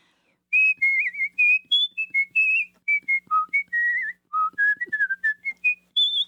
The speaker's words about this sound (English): Can you whistle on command? Would you whistle a little? Sure.